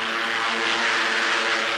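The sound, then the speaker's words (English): Fighter planes of the American Air Force over China, their flying general at the controls, roar aloft seeking the enemy: a loud, steady propeller-engine drone with a dense harmonic hum that holds constant for the whole stretch, no voices over it. “Roaring aloft, they seek the enemy, their flying general still at the controls.”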